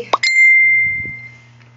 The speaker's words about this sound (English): And I do apologize for the dings. I'm doing this on my phone, and people like to ding me and ask me questions and stuff. So that was one just coming through, so I apologize for that.